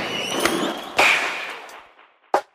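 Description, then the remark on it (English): Sharp, loud cracks of a starting pistol used by athletics starter Alan Bell: three bangs at uneven intervals, each with a ringing tail that trails off. No one speaks. “he's fired the starting pistol at the Olympics, the Commonwealth Games, the World Indoor Championships and the European Championships”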